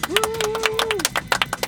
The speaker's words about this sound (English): Woo! Ooh, there's extra clapping because he's brought a friend.